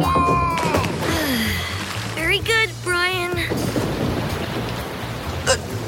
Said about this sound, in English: It's just a tropical rain shower. It should stop any minute.